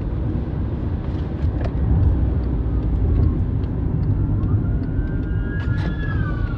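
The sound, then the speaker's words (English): A fire truck rumbles past with a heavy engine roar, and its siren rises and wails in over the last few seconds, fairly loud. “sorry, a car, fire truck just went by.”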